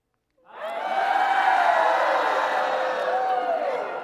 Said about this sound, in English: So the people shouted.